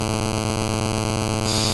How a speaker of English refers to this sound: She, I think you need to move your phone or something. She like did interference.